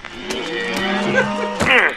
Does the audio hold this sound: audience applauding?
no